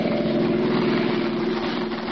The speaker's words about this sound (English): As their car speeds out of the darkening city, they discuss their assignment together.